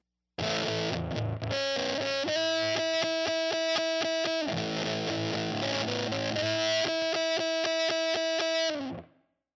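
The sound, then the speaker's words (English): A heavily fuzzed electric guitar, played through a ram's head Big Muff fuzz pedal together with reverb, plays sustained, saturated chords with a reverb tail, loud, shifting between a few chord shapes before ringing out and fading at the end. “So let's give a look to our reverb and our ram's head muff together.”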